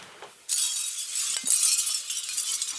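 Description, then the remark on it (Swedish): Pieces of a hanging lamp made of seashells, touched by hand, clinking and rattling against each other, a sudden bright jangle that keeps shimmering with dense, high, delicate clicks for a couple of seconds. “Det är alltså en lampa av snäckskal som hänger. I tapper. Rör lite så kan man förstå hur den ser ut.”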